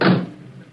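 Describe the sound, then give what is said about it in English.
A single solid thump of a car's back door shutting as a figure slips into the back seat of a stopped car on a deserted road several miles from an airport in the evening. It is loud at first and quickly fades into a low, muffled rumble with no voices. “On a deserted road, several miles from the airport, a car is stopped and the back door is open. A dark figure emerges from the surrounding shadows and slips into the back seat.”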